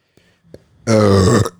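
burp

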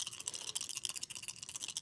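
many dice being rolled

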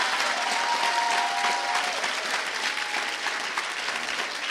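audience clapping

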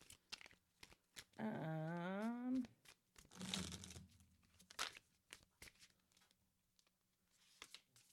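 tarot cards being shuffled

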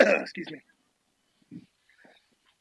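sneeze

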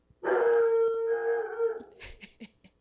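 dog howling

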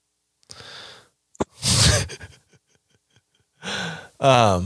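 yawn

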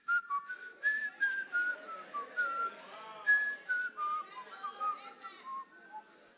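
person whistling a tune

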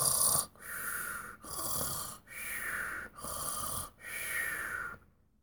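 snoring sound effect

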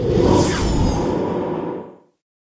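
whoosh transition sound effect

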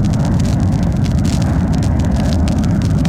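jet aircraft flying overhead

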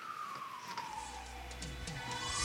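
siren

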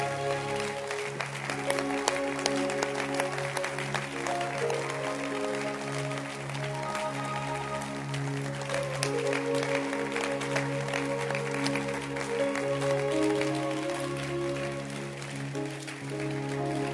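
audience clapping hands

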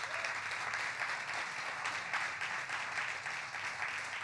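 audience applause

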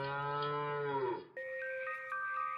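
cow mooing

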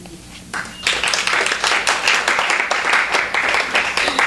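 audience applause

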